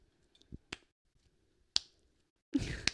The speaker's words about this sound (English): That sounds like very sarcastic clapping.